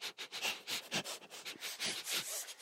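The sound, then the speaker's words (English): A person sniffs the air repeatedly in quick, short bursts, fairly loud, a rapid series of breathy inhalations with no talking. “We're just going to have to sniff him out.”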